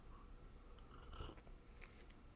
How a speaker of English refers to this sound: Let me take a sip of my tea real quick. Hold on.